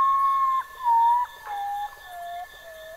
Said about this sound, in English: The patou birds are sometimes called poor me ones because of their sad-sounding calls. You'll have to listen to really get it.